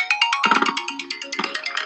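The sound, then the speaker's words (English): A melodic phone ringtone signals an incoming call, chirping a quick run of bright electronic notes in a steady repeating pattern, clear, with no voices. “Somebody's calling me.”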